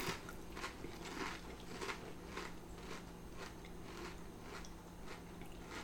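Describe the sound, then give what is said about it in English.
Steady, rhythmic crunching of snacks eaten from a bag, with sharp crackly bites every half second or so and a faint crinkly rustle of the bag underneath, at a moderate level with no talking. “The crunchiness. It's more the bag that's the problem.”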